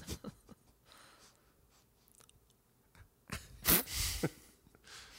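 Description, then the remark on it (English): A zipper on a tightly packed, overstuffed bag is yanked in short, halting tugs, with rasping bursts and a louder scraping stretch near the end as it is forced along. “He's got to you can barely unzip that fucker.”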